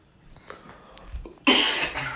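After a near-silent moment, a person's single harsh cough erupts loudly, a rough burst that fades out over about half a second with no talking.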